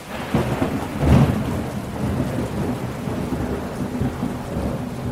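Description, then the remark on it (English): Heavy rain pours steadily while a deep rumble of thunder swells early on, then the downpour continues as a dense hiss with low rolling undertones. “And worse, climate change has intensified the rainy season, and more rain has meant more floods.”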